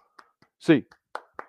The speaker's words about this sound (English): In the meantime, get those hands up. I know you don't want to do it, Bruins fans. 8 clap time, baby. And 1, 2, 3, 4, 5, 6, 7, 8.